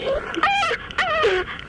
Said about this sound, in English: Oh, Bubbles. It's a real dog, obviously. Is it a person? No, it's a real dog. It was a little dog. It was so fat that it hurt it to move, like it hurt for it to stand up because it was so fat,